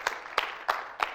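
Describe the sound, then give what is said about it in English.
An audience applauds a couple celebrating their 36th anniversary: a steady wash of many hands clapping with four evenly spaced, sharper accents, as if part of the crowd claps in rhythm. No voices come through. “Can we all give them one more hand of applause?”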